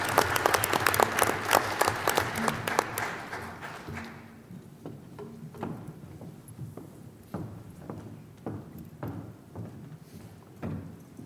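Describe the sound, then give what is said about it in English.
An audience at a board meeting applauds its athletes, the clapping loud and dense at first, then thinning after a few seconds into scattered, lighter claps that trail off without any talking. “Let's give another round of applause to our athletes.”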